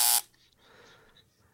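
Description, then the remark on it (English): An Acela train's departure alert sounds, signalling that the train is leaving: one short, loud, harsh buzzing tone lasting a fraction of a second, then a faint, fading tonal hum with no voices. “It's letting you know that the train's leaving.”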